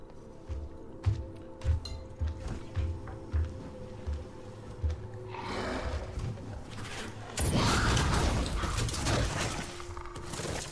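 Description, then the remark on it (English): The Xenomorph creature in the video game Alien: Isolation: heavy, steady stomping footsteps thud along for several seconds, then give way to a rising hiss and a loud, harsh rattling that sustains to the end. No one speaks. “Kind of stomps around and it hisses and it rattles and then it kills you.”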